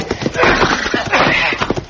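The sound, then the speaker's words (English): Horse hooves clop in a quick, steady rhythm, fairly loud, while a horse whinnies over the hoofbeats for the whole two seconds. “Come off that horse, Pete!”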